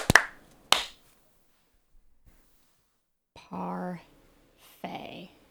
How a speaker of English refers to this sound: We'll click in 3, 2, 1, click. All right. Clap sync. 3, 2, 1.